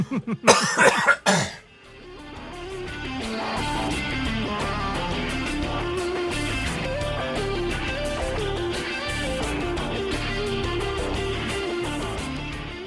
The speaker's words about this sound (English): I keep having to cough and I can't talk.